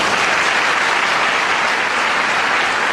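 Steady, loud applause from an audience, a dense wash of many hands clapping at once that holds an even level for the full few seconds, with no voices heard.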